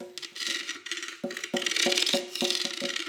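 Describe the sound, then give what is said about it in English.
A person imitates a pleased cat, making a breathy, rattling, purr-like noise with a steady pitch, in a few uneven pulses that swell and fade over about three seconds. “This is the noise my cat makes”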